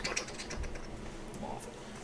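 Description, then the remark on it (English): A voice imitates super fast typing: a rapid, unbroken flurry of dry clicking sounds for about two seconds, fairly quiet, with no words spoken. “Is that a typing noise, or is that more of a like that's like a robot corn.”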